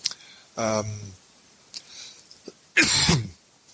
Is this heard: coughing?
yes